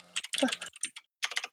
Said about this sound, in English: I kind of like that sound. Yeah, the keyboard sound good.